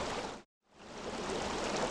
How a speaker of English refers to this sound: This is what the Huron River sounds like. What you can't hear are the toxic chemicals like PFAS that have contaminated the water.